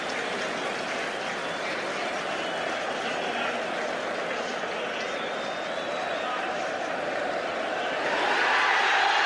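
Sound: stadium crowd cheering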